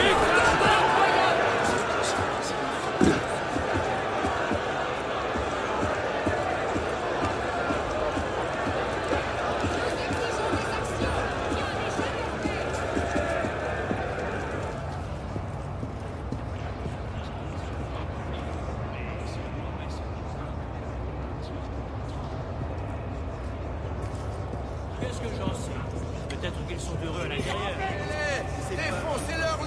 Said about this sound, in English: I'm going to play this sound of walking from that crowd into the interior of the cathedral.